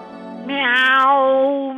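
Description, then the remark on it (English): A single long, drawn-out cat meow, loud, swelling in pitch and strength midway before tapering off at the end. “Meow, meow, meow. Meow.”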